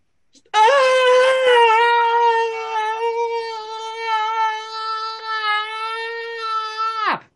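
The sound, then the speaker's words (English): A single long, loud scream, imitated by a voice, holds a steady high pitch for about six and a half seconds before cutting off abruptly. “And as soon as it comes loose, you hear just a person screaming.”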